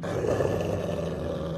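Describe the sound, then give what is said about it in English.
A low, rumbling dog-like growl coming from a kitchen in a house, holding steady for a second and a half, deep and continuous without breaks, alone with no talking. “I'm about to go back to my game when I heard what sounded like a dog growling.”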